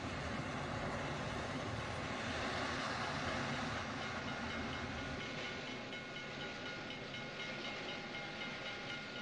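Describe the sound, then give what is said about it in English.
A train rumbles steadily, a dense continuous roar of wheels and machinery with a faint hiss on top, easing off slightly toward the end. No one speaks. “Why can't they just use a train so that way there would not like be no sound, like there would be sound like for the whole movie, like not just quietness.”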